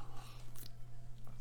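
A couple of soft sips of coffee with faint slurping mouth sounds, spaced about half a second apart over a steady low hum, with no one talking.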